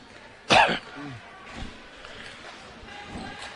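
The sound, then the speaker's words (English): A single sharp cough bursts out loudly, followed by a few quieter, muffled throat-clearing noises against a low background hiss. “There's going to be a little sniffle, a little cough.”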